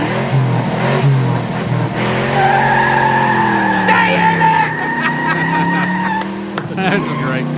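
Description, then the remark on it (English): A car doing a burnout: a loud, continuous engine roar with high, screeching tire squeal that holds steady for several seconds, its pitch wavering as the revs rise and fall. “I want everybody to start burning at the same time”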